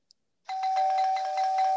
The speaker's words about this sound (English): Oh, someone's at the doorbell Oh, already? oh my gosh. Oh, let's just see who that is.